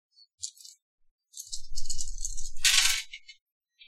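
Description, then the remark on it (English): Six dice (five plus one) rolled in a tabletop game rattle and clatter for a few seconds: a couple of quick clicks, then a sustained tumbling rattle that swells to a bright burst before settling with a few final taps. “Alright, so how many? 5 dice plus 1 for your quick hands.”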